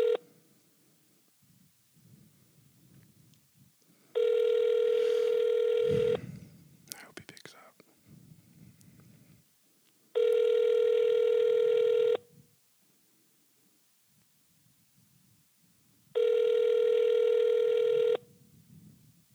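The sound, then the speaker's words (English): A ringback tone from an outgoing phone call that goes unanswered repeats three times. Each steady, buzzy two-second ring is separated by about four seconds of quiet, with soft murmuring and brief rustling between rings. “So, I guess I'll call him.”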